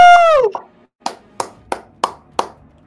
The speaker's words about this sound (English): Watching the young boy soaring through the sky as if flying into the sun, Subaru took the initiative of leading the crowd into the round of applause. Roaring thunderous applause,